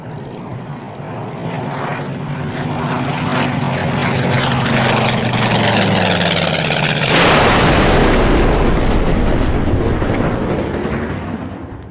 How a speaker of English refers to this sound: Looks like the plane crashed over there. Better go try to salvage something.